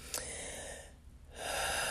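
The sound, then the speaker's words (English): A slow, deep breath, an airy rushing inhale that pauses briefly before another long breath continues. Nobody speaks. “Just deep breaths. Deep breaths.”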